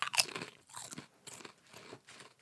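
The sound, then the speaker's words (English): Loud crunching of a crispy barbecue snack being bitten and chewed, with a sharp bite at the start followed by several rhythmic crunchy chews, no talking. “It's got a nice crunch to it. Good crunchy.”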